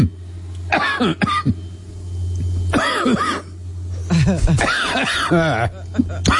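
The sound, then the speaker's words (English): Harsh coughing comes in several bursts, rough and strained like someone choking and gasping on weed smoke, with raspy throat-clearing between fits over a steady low hum. “I choke on this shit.”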